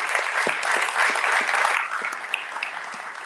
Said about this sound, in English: I was happy to work with her to write a grant that was funded for $1 million from the Houston Endowment. And that was, yeah, let's applaud that.